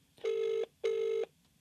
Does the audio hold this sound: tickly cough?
no